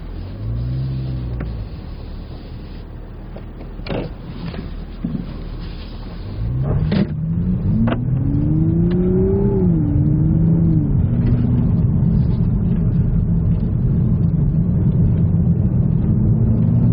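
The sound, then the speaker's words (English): A small sports car with automatic transmission idles low, then revs up and holds a throaty, rising drone as it turns around on a cul-de-sac off a main highway, with a few sharp mechanical clicks early on and no talking. “I'm parked down here on a little cul-de-sac off of the main highway, so I'm going to turn it around.”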